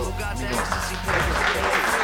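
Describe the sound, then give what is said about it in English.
Applause swells into a dense, steady wash of clapping that grows louder halfway through, with murmured voices underneath at the start. The applause is for Pam Grier, marking her birthday. “All right, applause for that, sir.”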